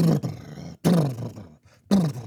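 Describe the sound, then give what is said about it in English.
A voice imitates a Camaro sports car engine with three loud, throaty revving bursts, each a low, rough roar that dips in pitch before cutting off, with short pauses between. “And number two, that you're really good at sound effects.”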